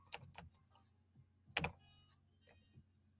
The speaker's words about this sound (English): just bear with me because I'm typing this over here for those Instagram followers